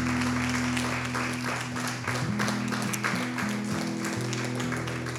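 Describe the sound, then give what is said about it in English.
A crowd claps steadily in sustained applause as a hand clap of praise to the Lord, a dense wash of hand claps over a sustained low organ-like tone that shifts between pitches. “Can we give the Lord a hand clap of praise today?”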